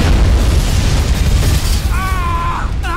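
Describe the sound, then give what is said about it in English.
A loud cinematic explosion boom in a movie scene, going off behind people, with a heavy low rumble that rolls on without letup, and a brief high wavering vocal sound cutting through near the end. “Without flinching when it explodes behind them.”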